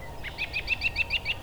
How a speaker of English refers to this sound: The cool evenings of spring provide a calm but rich soundscape. The jolly laughing call of the American robin.